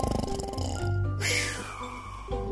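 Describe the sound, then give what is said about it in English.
A person imitates loud snoring: a long, rough, rattling inhale that swells into a breathy hiss, then drops back to a low throaty rumble. No words are spoken. “Do you think they snore like this?”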